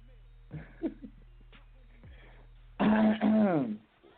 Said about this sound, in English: I feel like that's the first time I cleared my throat and fully cleared it.